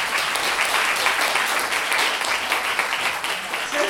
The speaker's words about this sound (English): Round of applause.